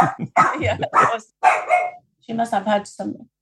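dog barking

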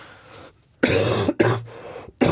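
cough

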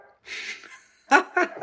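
dog barking outside

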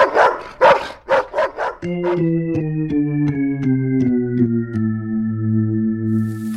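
dog barking

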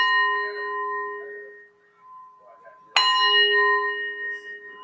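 wind chimes ringing

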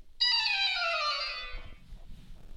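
quiz game buzzer

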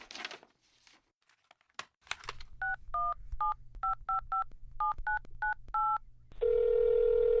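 telephone number being dialed

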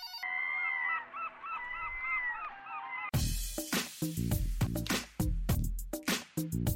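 seagulls squawking

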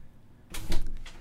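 door being opened

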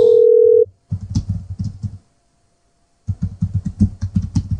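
telephone dial tone

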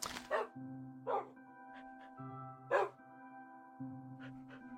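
dogs barking

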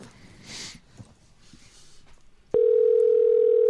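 outgoing phone call ringing

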